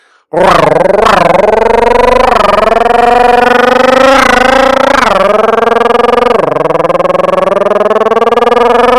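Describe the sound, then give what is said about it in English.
A voice imitates a revving motorcycle engine the way a kid would, for fun: a loud, continuous buzzing drone that surges up in pitch several times, like throttle blips, then settles lower and keeps going for several seconds. “And now just for the fun of it, like I'm an actual motorcycle and I'm a kid doing it.”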